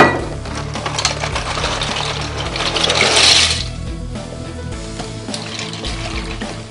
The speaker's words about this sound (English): Alright, let me put some pasta in and water is ready.